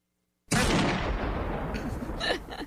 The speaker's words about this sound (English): Okay, so four out of four gunshots out of a high capacity clip. Which there's actually no such thing.